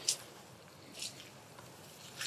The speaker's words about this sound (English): The water coming through the stones, the top end of the, by the bridge, the top end of the lake.